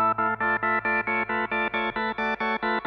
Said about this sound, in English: Here's your synth solo. Listen to the, like, getting the synth to make these different noises. Maybe there is a keyboard on it.